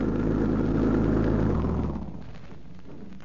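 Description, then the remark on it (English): A car engine rumbles loudly, a deep steady drone that drops to a quieter idle after a couple of seconds, as if pulling up and slowing to a stop. “Doesn't that sound like their car?”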